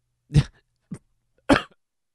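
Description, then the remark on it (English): Two sharp coughs about a second apart, with a shorter throaty catch between them, and silence around them. “And there was another cough.”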